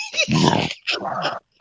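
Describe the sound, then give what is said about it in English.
A deep, rumbling burp lasting about half a second during a burping contest, followed at once by a shorter, higher belch-like grunt, then a faint click. “A little burping contest going on.”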